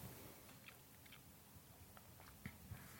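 crunching

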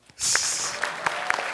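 audience clapping

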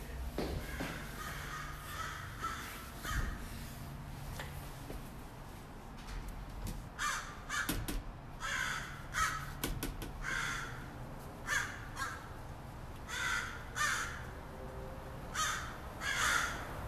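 crows cawing

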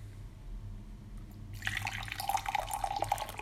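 liquid being poured out

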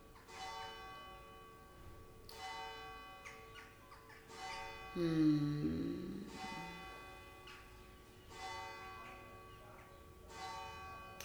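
church bells ringing

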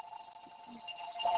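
telephone ringing

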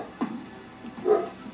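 dog barking

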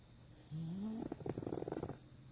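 pug dog snoring

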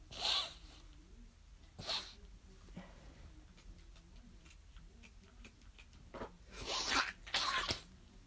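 suppressed sneeze

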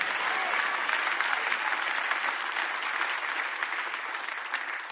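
audience clapping

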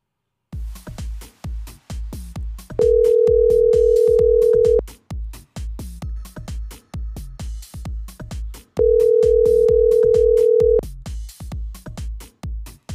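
phone call ringing

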